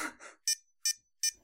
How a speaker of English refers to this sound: Yeah, it's just a constant beeping over and over and over again. Oh god. And let me guess, you can't mute it or turn it down, can you?